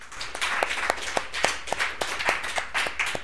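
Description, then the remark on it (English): An audience at a comedy show claps steadily for comedian Adam Burke, many hands blending into a continuous patter with sharper beats standing out at a quick, even rhythm. The clapping stays at a moderate, constant level with no voices. “Ladies and gentlemen, please clap again or keep clapping for Adam Burke.”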